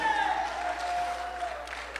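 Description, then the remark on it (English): A church audience claps their hands to the Lord steadily in a dense, continuous patter, with a sustained musical tone running underneath that slowly dips in pitch. “Somebody needs to clap their hands to the Lord today.”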